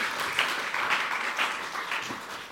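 A crowd applauds steadily, many hands clapping together in a dense, even patter that stays fairly loud for a few seconds, with no talking over it.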